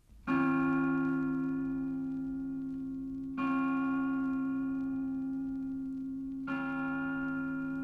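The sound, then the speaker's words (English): The large Angelus bell of the Pro-Cathedral in Dublin tolls three times at noon at slow, even intervals, each stroke ringing out loudly and sustaining a rich, humming resonance into the next, with no voices present. “When the broadcasting of the Angelus Bell at noon at 6:00 from the Pro-Cathedral of Dublin began, a permanently placed microphone used to be switched on to pick up the sound of the bell as it was rung.”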